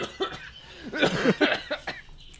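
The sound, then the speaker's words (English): A run of heavy, hacking coughs, roughly five or six rough bursts in quick succession, fairly loud with short gaps between them. “Trucker cough. You guys got trucker cough.”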